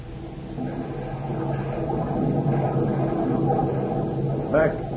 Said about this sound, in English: So when the time bombs exploded, the sudden surge of water caught the trio in a maelstrom.